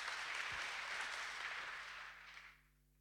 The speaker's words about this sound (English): It's all right. You can clap for that. That's exciting.